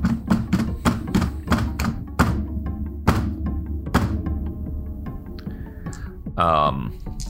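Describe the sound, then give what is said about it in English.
Loud, heavy pounding on a door: a quick burst of rapid blows, then a few slower, separate thuds, over a low droning background with a brief rising sound near the end. “you start hearing this pounding on the door around this time.”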